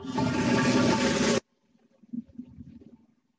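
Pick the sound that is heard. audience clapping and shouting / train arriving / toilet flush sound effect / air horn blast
toilet flush sound effect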